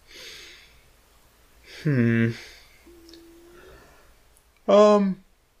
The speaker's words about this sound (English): No, I was saying holy jeez, because I keep yawning, and I'm like, oh jeez, holy jeez.